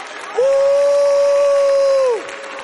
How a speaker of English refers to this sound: I want you, I dare you right now to stand up on your feet and begin to give God 30 seconds of your best praise. Begin to shout, begin to clap. Clap your hands, all ye people, and shout unto God with a voice of triumph. Hallelujah.